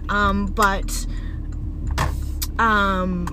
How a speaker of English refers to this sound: Sorry, I might be pausing because driving in the car,